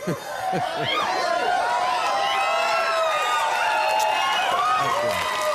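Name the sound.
audience clapping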